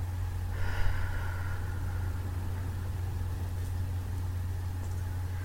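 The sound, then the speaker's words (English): A single long, deep breath out during a relaxation breathing exercise, airy and soft, starting strongly and fading over a couple of seconds, over a steady low rumbling hum like an idling engine. “Breathing in deep and out long, long exhalations.”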